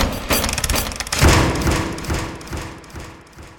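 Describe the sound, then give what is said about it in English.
Heavy double doors are smashed through and burst open with a loud crash, followed by a jumble of thuds and splintering, rattling debris that gradually settles and fades. “The voice was followed by the giant King of the Elves, who smashed through the double doors.”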